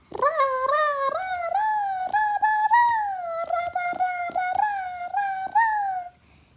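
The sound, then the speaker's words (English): A child imitates a happy frog with a sustained, warbling high-pitched voice that wavers up and down, broken by quick rhythmic catches, for about six seconds, with no talking. “So this is my entry for a happy frog. So first, there's a happy frog, which would sound like...”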